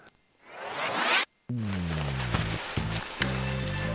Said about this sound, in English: Man, it's getting hot in here. All right, we've pulled the zipper down.